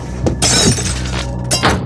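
A lamp falls and shatters, with a burst of bright breaking glass followed by scattered tinkling fragments and a second sharp crash near the end, all without speech.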